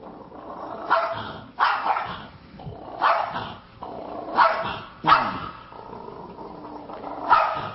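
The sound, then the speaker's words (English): A dog in a video barks repeatedly in a steady series of sharp, loud barks, with a low, rough growl rumbling between them. No one speaks. “I don't want to mess with that dog, is what the dog's thinking.”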